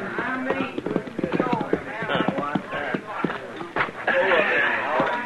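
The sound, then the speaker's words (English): Horses' hooves clop steadily as riders ride up to a chuck wagon at a cattle herd's camp, the irregular hoofbeats running under voices that talk and call out loudly throughout, including the cook hollering for the men to come and eat, with a busier stretch of commotion near the end. “We rode up to the chuck wagon just as the cook was hollering for the men to come and get it.”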